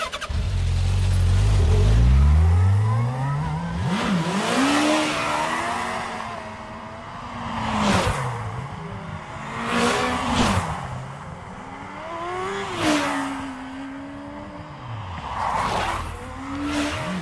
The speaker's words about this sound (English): It's a three-wheeler motorcycle that we recorded a few years ago for a film that I was working on, and we needed few moves, so we decided to record it entirely with the multi-track recorder.